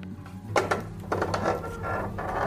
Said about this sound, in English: It's just a door. Why am I getting spooked by a door?